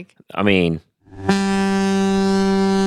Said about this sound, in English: There's that horn. That is the saddest horn.